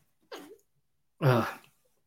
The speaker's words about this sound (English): I'm going to sneeze in a minute. I'll try and hold it back.